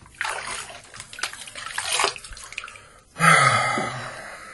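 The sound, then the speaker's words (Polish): Hot water runs from a tap in a steady splashing rush, then the flow shifts abruptly into a fuller, louder gush for the last second or so. No one speaks. “Gorąca woda.”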